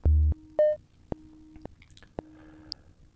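Slow, wet gum chewing with soft lip smacks, punctuated by a few sharp clicks at a steady, unhurried pace and a couple of brief electronic tones early on; fairly quiet, no talking.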